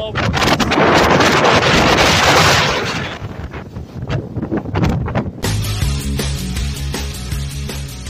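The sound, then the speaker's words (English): Fierce wind from Hurricane Ian buffets a cell phone microphone on a boardwalk on the east coast of Florida in loud, distorted roaring gusts for about three seconds, then eases into choppier rumbles before music takes over near the end. “I mean, I'm getting blown up.”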